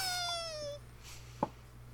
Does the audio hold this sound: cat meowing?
yes